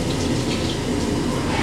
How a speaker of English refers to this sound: Hey, if we shower together, we have 12 minutes of this.